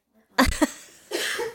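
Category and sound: human body sound, cough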